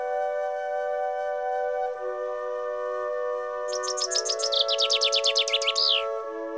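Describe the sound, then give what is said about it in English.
A steady, flute-like melody of held notes, played on a bird-calling staff held out like a flute, steps between pitches while a rapid burst of bright bird chirps and trills joins in near the end, all clear with no talking. “I pull out the staff of bird calling. I do my ritual with it, holding it out like a flute.”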